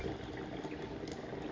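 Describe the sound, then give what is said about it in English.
Water bubbles steadily through a bong, a continuous gurgling burble at moderate loudness with no pauses and no voices. “All right, let so, me bong rip first.”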